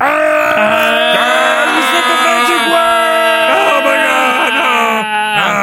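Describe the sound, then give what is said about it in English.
Several voices join in a long, loud imitation of the horrifying scream of the cartoon character Pizza Steve, a sustained wavering wail that quivers in pitch and holds without a break for nearly six seconds. “Blood immediately began to flow profusely where his left eye once was, triggering a long, horrifying scream from Pizza Steve. I need all of the Muppet vowels to do the scream now.”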